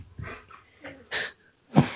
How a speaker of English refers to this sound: Your dog is so loud.